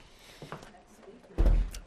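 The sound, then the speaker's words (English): A chair is moved with a single heavy scrape and thump lasting under half a second, after a quiet stretch of faint room noise. “I'll move this chair.”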